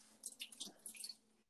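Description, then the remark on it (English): A short pour of a shot of Tito's vodka from a bottle, with a few quick wet glugs and splashes over about a second, fairly quiet, with no talking. “I'm gonna pour myself a shot of Tito's.”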